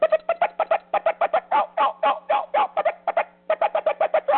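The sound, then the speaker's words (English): A person vocally imitates a hen turkey in their natural voice to fire up a bird, hard, rapid, sharp cutting notes running into excited yelps, about two dozen quick calls in a steady, insistent rhythm with a low hum underneath. “Well, I mean, from a hen perspective, it's just simply cutting and excited yelping.”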